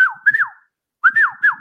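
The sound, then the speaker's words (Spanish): A person whistles a catcall, two short bursts of sliding, swooping notes separated by a brief pause, clear with no talking. “Porque claro, la pilila te decía, silbando...”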